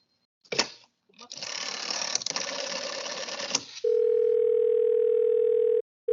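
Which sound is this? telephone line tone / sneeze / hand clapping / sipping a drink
telephone line tone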